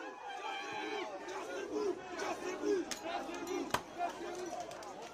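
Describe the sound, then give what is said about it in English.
A crowd of protesters at a night-time street demonstration in France shouts and clamors together in a continuous, overlapping roar, with sharp bangs cutting through the din now and then. “Now, protesters are furious, to say the least, and now overnight there have been fires in the streets across France, as well as reports of smashed shop windows during another night of demonstrations.”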